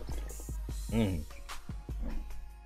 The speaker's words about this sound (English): This question, let me get a swig of this water real quick. Hold on.